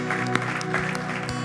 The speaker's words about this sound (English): Did you know this? 14 kids in Grand Rapids were rescued from sex trafficking this week. That's worth applause.